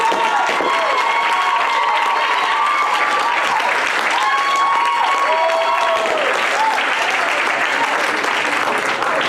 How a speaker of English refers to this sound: He's being presented as Best Pastor. Best Pastor. Let's go ahead and give him a round of applause.